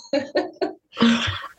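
A person ill with COVID coughs: three quick, sharp coughs in a row, then a longer, rougher hacking cough, with no talking.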